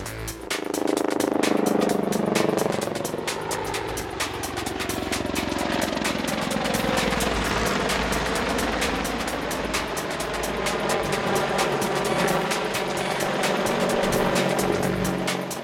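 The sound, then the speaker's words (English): An Apache helicopter roars steadily through a Blue Eagles flying display, its rotor thudding in a fast, even rhythm while the engine's whine rises and falls in pitch as it manoeuvres. No one speaks. “But let's have a quick glimpse of it in action in a Blue Eagle's display.”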